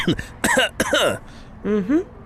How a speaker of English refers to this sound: I just had a cough.